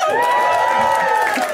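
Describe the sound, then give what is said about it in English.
A full, excited comedy-show crowd at the UCB gives a loud, sustained roar of cheering, with overlapping whoops and high shouts rising above a dense wash of voices, steady throughout with no pauses. “Look at this very full and excited crowd.”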